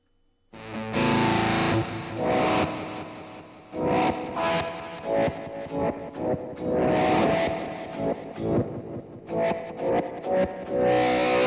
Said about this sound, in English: I haven't used this pedal for years. It's called the Electro-Harmonix Micro Synthesizer. It basically gives your guitar a synth sound. So you can play, you know. Sounds like a keyboard.